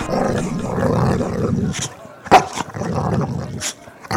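A dog barks and growls in a rough, throaty run of sounds, with one sharp, louder yelp partway through, fairly loud.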